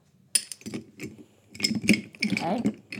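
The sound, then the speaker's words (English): A spoon clinks against a heat-proof glass several times in an irregular stirring rhythm as a drink of Licor 43 topped with coffee is stirred, fairly quiet, with low rumbling handling noise underneath. “I just wanted to get the spoon all the way down.”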